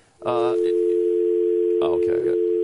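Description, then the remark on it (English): A steady, unbroken telephone dial tone hums loudly throughout, left ringing on a call that never connects, while a couple of short bursts of voices talk over it. “Oh, I think our people screwed up the phone.”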